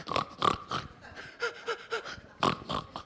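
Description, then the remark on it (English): Pigs snort and grunt in quick bursts while rooting with their snouts buried deep in the earth, roughly a dozen short, breathy blasts in an uneven rhythm, moderately loud, with no voices. “And their snouts were deep, and it looks almost like they just come up to breathe.”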